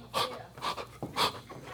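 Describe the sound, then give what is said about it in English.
A preacher pants heavily during a church service, three or four breathy, rasping gasps for air in a loose rhythm, fairly quiet, with no talking. “Gotta get some air.”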